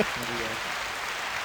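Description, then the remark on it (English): A canned round of applause from a soundboard button plays as a steady, dense wash of clapping at an even level, with a short voice murmuring underneath at the very start. “You can press the round of applause from dissing your age.”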